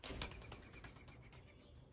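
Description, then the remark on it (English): A bird's wings flap in a quick series of soft, rhythmic beats as it takes off and flies away, fairly close but quiet, with no voices. “Could have chilled, bird, but I get it. You got stuff to do.”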